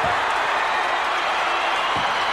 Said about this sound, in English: Boston Crab submission. The only thing I gotta say, it took a double team to do it. What capacity crowd is electric? Look at this. There is jubilation here.